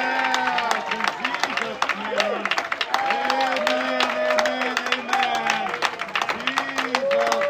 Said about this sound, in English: Say it one more time, she'll clap a little louder.